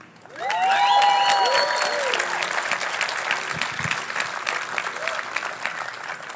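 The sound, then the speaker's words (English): An audience claps for one another, bursting into sustained applause, dense and steady clapping that swells quickly and holds loud throughout, with a few whoops and shouts rising over the crowd early on. “So it would make me super fucking happy if everybody clapped it up for each other.”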